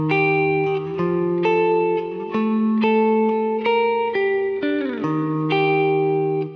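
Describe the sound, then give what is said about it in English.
A clean electric guitar, played without a crystal delay effect, plays a slow sequence of sustained two-note chords, each struck firmly with clear harmonics and a short ring, changing roughly every second with no echo trails. “And it sounds nice just playing two notes. Here's the part without the crystal delay.”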